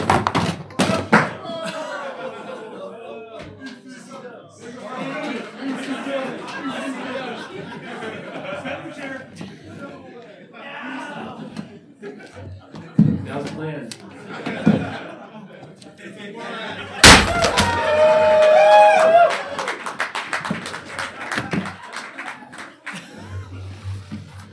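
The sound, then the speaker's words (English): A single loud, sharp slam of a prop chair striking hard in a wrestling-style chair shot cuts through lively chatter and laughter, with people talking and reacting before and after the impact. “That was gimmicks. Prop chair.”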